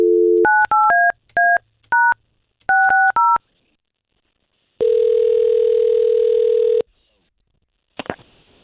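A brief dial tone gives way to a quick run of about ten touch-tone keypad beeps as a phone call is placed to a woman, followed by one long ringback tone and a sharp click as the line connects.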